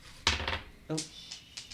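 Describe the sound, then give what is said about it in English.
Dice rolled during a tabletop role-playing game clatter across a hard tabletop and run away: a sharp first knock, then a few scattered, bright clicks tapering off, with a brief vocal exclamation partway through. “Runaway dice.”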